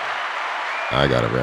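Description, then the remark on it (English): A short burst of steady clapping applause sound effect, canned-sounding, gives way after under a second to a voice cutting in over the fading noise. “There's your round of applause.”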